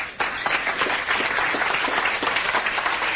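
A crowd applauds steadily, many hands clapping in a dense, continuous patter at a loud, even level from start to finish.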